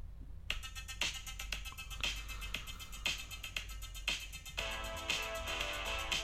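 An upbeat 1980s synth-pop song plays through a small, tinny phone speaker, with a steady thumping beat and bright layered synth chords, fairly quiet and continuous, with no one talking over it.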